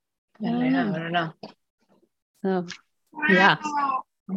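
cat meowing loudly

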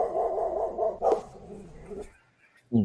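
dog barking sound effect

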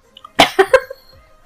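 coughing

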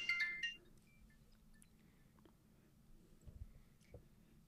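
phone ringing

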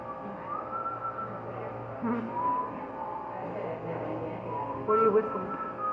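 person whistling a tune

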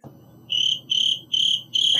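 crickets chirping

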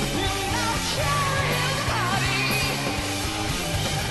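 screamed vocals

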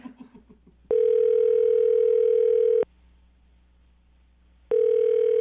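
telephone dialing tone

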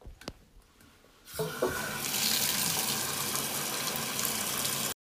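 shower water running

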